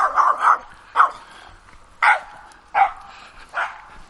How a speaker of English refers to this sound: Barky dog.